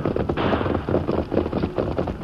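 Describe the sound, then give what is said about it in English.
A rapid volley of six-gun revolver shots as the Lone Ranger, riding the horse Silver down a mesa, fires into a group of white hunters: sharp cracks in quick, uneven succession over a dense, rumbling wash of noise, loud and continuous throughout. “Astride the great horse, Silver, the Lone Ranger, followed by Tonto, swept down the mesa, his 6 guns spitting a deadly fire into the ranks of the startled white hunters.”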